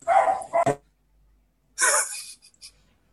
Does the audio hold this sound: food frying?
no